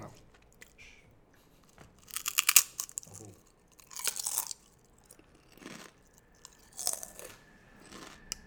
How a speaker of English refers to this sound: More ASMR for y'all, your ears. No, get the crunches in there too.